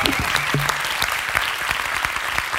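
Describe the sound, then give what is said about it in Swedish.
A live-show audience at Skandiascenen at Cirkus applauds on a rainy Thursday, a dense wash of many hands clapping at a loud, even level throughout, with a few sharper individual claps and a brief whoop poking through. “Applåd till er!”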